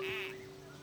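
A dog's toy duck, hit during a baseball game, gives a single squeaky squeal with a steady high-pitched tone and a raspy burst that quickly fades, like a rubber duck squeezed once.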